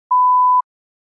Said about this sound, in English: You may begin to prepare your response after the beep.